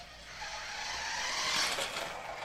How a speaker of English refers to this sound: That's one thing I used to break a lot of when I was a kid. That's a remote-controlled car.